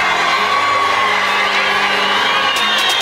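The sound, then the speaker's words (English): A huge stadium crowd at University of Phoenix Stadium roars and cheers continuously as Arizona Cardinals player Larry Fitzgerald, number 11, is introduced, a dense wall of overlapping shouts and whoops at steady high volume, with a few sharper yells cutting through near the end. “Well, you know, in University of Phoenix Stadium, Larry, Larry, Larry.”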